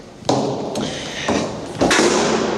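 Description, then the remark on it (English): A heavy stairwell door slams shut with a loud, booming thud, followed by a few more knocks and clunks that ring out in the echoey stairwell. No voices. “Sorry for the loud door slam. I'm in the stairwell, so it's kind of echoey.”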